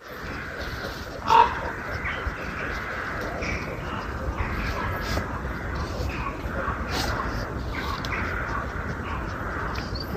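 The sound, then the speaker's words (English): A dense chorus of crows, rooks and ravens cawing together at a roost in the countryside less than half an hour from London, a continuous overlapping clamor with one louder harsh call standing out near the start. “Feels like the sort of sound of, definitely the sound of autumn, roosting crows and rooks and ravens.”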